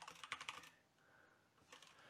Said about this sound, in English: So once again, I apologize for the loudness of my keyboard.